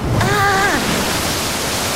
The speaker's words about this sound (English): Out of seemingly nowhere, a wall of water rushes towards them. I mean, us.